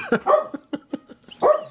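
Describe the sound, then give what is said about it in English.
A dog, Mozzie, barks in a quick burst: a loud bark, then a few short, lighter yips, then another full bark. There is no talking. “Not bark.”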